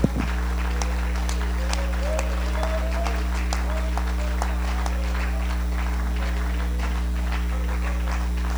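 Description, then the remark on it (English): An audience claps steadily in praise to God, a dense wash of many hands sustained throughout over a low hum, with a few faint voices rising briefly beneath the applause. “Can we give God a hand clap of praise tonight?”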